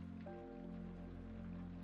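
Light rain patters softly and steadily, a faint, even hiss over a low sustained hum, with no voices present.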